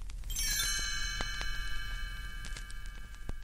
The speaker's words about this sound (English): You'll know it's time to turn the page when you hear the chimes ring like this.